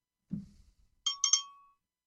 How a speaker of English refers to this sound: Bell.